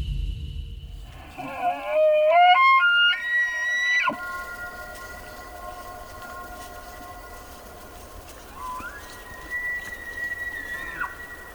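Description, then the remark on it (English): A wild elk bugles in the Mountain West of the U.S.: a low note climbs into a loud, piercing whistle that holds and then breaks off sharply. A softer, steadier tone follows, and a second, quieter bugle comes near the end. “Back here in the U.S., the bugling of wild elk is part of what makes the Mountain West so special.”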